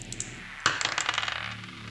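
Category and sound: dice being rolled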